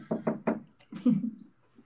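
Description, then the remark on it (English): Three quick knocks on wood in a steady, even rhythm, fairly loud, followed by a brief murmur of voice. “I just knocked on wood for you.”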